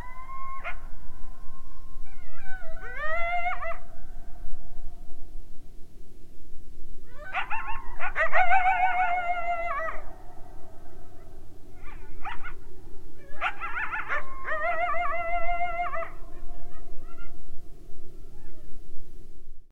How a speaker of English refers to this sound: Example 4, Coyotes Yelping and Yipping.